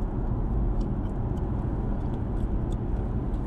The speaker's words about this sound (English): Go. Let this big-ass truck in.